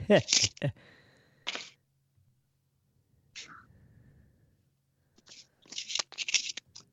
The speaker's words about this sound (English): Rustling. Actually, I'll turn it down a little bit. Rustling going on. Oh, it's my shirt, I'll bet. It's hitting that thing. Might be stand rubbing.